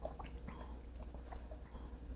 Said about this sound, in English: I was taking a sip of water.